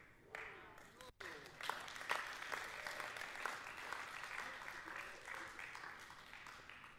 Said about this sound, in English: You clap.